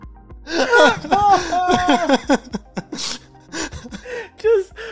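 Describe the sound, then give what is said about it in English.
A sharp sneeze preceded by a quick gasping inhale, surrounded by loud, strained vocal noises and breathy bursts that rise and fall over several seconds. “I had to sneeze. I didn't have time to find it.”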